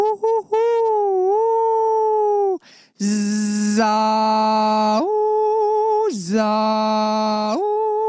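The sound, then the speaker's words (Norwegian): A voice imitates an owl with exaggerated, drawn-out hoots: several long, loud, sustained tones that slide and dip in pitch, some turning breathy and rough, with brief gaps between them. “Skikkelig, skikkelig uglelyd.”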